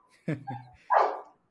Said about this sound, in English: Awesome. And I can tell you have a dog.